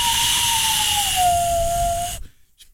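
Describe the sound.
A single breathy whistle blown through cupped hands, a steady low-pitched tone that sags slightly downward over about two seconds amid loud rushing air, then cuts off abruptly.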